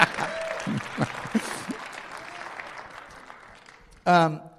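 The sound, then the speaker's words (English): Church audience applause during a sermon, a dense wash of clapping that holds steady for about four seconds and gradually thins out, then a single voice cuts in loudly as it ends. “I needed a little more applause from her. There we go.”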